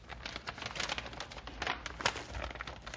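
The tough, taped paper of a sealed packet being torn open and crinkled in a continuous, rustling struggle, with short ripping bursts and crackles, no voices over it.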